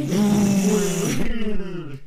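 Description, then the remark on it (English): A voice imitates a Honda car engine downshifting from sixth gear to third on a highway: a loud, buzzy, revving hum that suddenly drops to a lower, rougher rumble and keeps droning, about two seconds long. “He'll be like, all right, I'm in sixth gear right now. Oh, time to go to three. And you just hear it go.”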